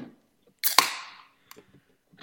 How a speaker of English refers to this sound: So I'm going to open a beer.